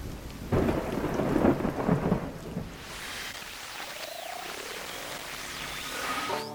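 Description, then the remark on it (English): A rumble of thunder rolls through for the first few seconds, then fades into steady, hissing rainfall that continues to the end, with no voices present. “They put the priests of Baal to death, and soon after that, it began to rain.”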